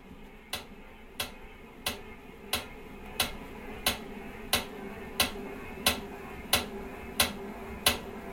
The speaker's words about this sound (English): So now if I start pedaling, this is what the bike sounds like.